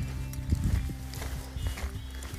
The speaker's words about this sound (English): You can hear possibly our feet on the ground. So I'm currently walking in the fells yet again.